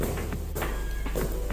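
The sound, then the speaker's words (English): Footsteps walk at an even pace, each step a soft thud, over a steady low hum in the background. No one speaks. “I like the footsteps.”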